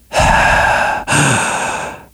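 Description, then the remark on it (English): A loud breath rushes straight into the microphone: a long inhale, a brief pause, then a long airy exhale. No one speaks. “I'm really cautious when I'm breathing into this microphone.”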